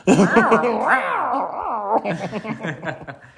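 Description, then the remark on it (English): A cat growls in a long, wavering, drawn-out yowl for about two seconds, loud, then breaks into shorter, choppier sounds that trail off. “I think she wrapped the cat again.”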